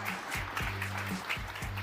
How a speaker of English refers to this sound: Everybody, please help me give our guests a warm round of applause.